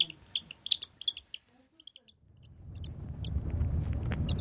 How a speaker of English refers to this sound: Finally full, the chick droops into a baby blue sheet, cooing a new contented call.